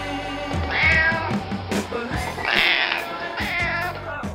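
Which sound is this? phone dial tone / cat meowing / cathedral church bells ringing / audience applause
cat meowing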